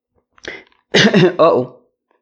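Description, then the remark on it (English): A quick breathy burst, then a pair of loud, voiced throat-clearing sounds, like someone stifling a cough, with no talking around them. “I don't want to cough into the mic.”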